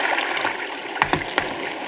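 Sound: rushing stream water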